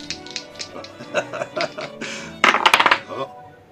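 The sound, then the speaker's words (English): Dice being rolled in a game for a second dance, clattering in a string of sharp little clicks, building to a quick, loud burst of rattling taps before settling; faint chuckling sits underneath. “Roll the dice for a second dance.”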